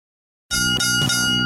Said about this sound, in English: All right, three bells and all is well. It's round three.